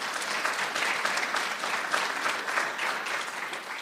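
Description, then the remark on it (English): An audience applauds steadily, many hands clapping in a dense, even wash of sound that holds at a moderate level for a few seconds without any voices rising above it. “You can clap for that.”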